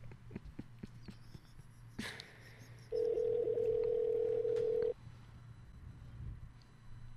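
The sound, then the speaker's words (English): A click like a phone handset being lifted, then a loud, steady telephone tone held for about two seconds over a low background hum, with no one speaking, as a phone call is being placed. “I think we have a phone call we have to make, don't we?”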